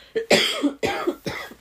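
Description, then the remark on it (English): A quick series of harsh coughs, about three or four bursts in rapid succession, loud and raspy with no talking in between. “Hey, sorry, I literally just had myself a little coughing fit right there.”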